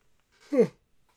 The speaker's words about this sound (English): Excuse me, it's getting late. And also when I talk for an extended period, my body is like, you need to yawn.